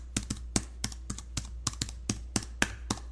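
Steady typing on a full-size keyboard with 110 thin keys, suitable for Mac and PC: soft, quick clicks landing in an irregular rhythm, about a dozen strokes, fairly quiet, with no talking.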